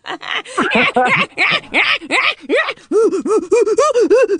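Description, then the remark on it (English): A voice imitating gorilla and monkey sounds live in a studio: a loud, rapid series of breathy rising-and-falling hoots and grunts, growing into a steady rhythmic run of pitched whoops. “That was a real gorilla. Monkey sounds.”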